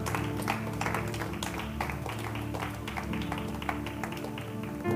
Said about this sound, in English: And if you love him, can you say amen? Can you give God a hand clap?